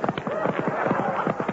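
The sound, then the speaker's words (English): Rapid, steady clip-clop of horse hooves, a brisk galloping rhythm of sharp knocks repeating throughout, moderately loud with no voices; the Sultan's horses ridden by Abbott and Costello as they escape. “I've got the Sultan's horses. Let's go.”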